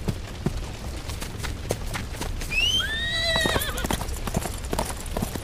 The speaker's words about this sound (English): wait, that's my horse!